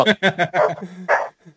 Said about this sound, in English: Man, that dog is really loud.